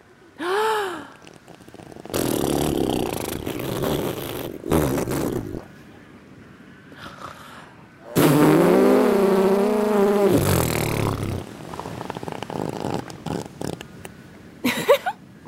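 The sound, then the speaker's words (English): A voice on a beach imitates an elephant seal with a series of deep, throaty, rumbling bellows, some short and one long and loud in the middle, separated by brief pauses, with a final quick snort. “Let's celebrate by making an elephant seal noise.”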